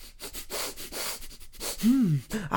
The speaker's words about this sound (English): Let us try the sample scratching and sniffing now.